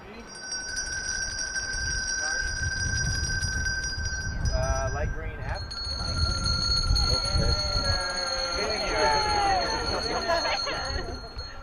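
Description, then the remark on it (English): Hand bells ring steadily throughout, a bright sustained metallic tone carrying over the murmur of a crowd gathered outdoors in the cold, with people talking and calling out in the background. “That's the bell.”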